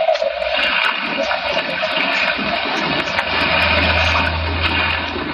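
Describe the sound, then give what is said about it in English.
Rough sea water churns and sloshes loudly around a small fishing boat plunging and bobbing in hard wind and a racing sea, in a steady, rushing roar, with a low rumble underneath and no voices. “Plunging and bobbing about in a little boat in a raging torrent”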